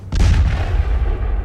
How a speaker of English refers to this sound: Your rusty cannonball goes flying into the water.